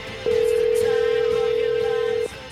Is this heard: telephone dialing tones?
yes